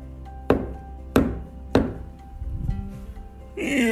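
Three sharp, evenly spaced knocks on a tree trunk, loud, each with a brief resonant decay, followed by a soft rustle and the start of a voice.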